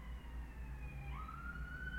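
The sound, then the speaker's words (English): Emergency vehicle sirens wail outside, their tone sliding and shifting in pitch as they pass, over a steady low rumble of traffic, moderately loud and continuous throughout. “Oh, there's sirens.”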